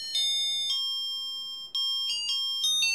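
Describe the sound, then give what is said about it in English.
An electronic doorbell chime plays a short tune of about six bright, ringing notes, each struck sharply and left to sustain, clear with no talking. “you ought to be a doorbell salesman.”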